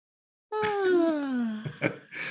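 A person gives a long, voiced yawn whose pitch slides steadily downward for about a second, then trails off into a few breathy exhales and gasps. No speech is heard.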